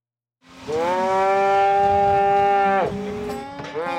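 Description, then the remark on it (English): During the fall roundup at the Bullhead Ranch, where all the cattle are gathered, a loud, drawn-out cow moo rings out for a couple of seconds, dips, then a second bellow starts up, with no talking over it. “This is the fall roundup at the Bullhead Ranch, a time when all the cattle are gathered.”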